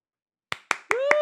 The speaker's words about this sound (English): If you don't know, I'm clapping because you just did the thing. That's awesome.